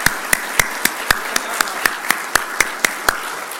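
A group claps together in a steady, even rhythm, roughly four sharp claps per second, over a constant background hiss. No one speaks.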